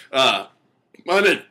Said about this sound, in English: I got a fucking burpee burp. All right. I love to burp.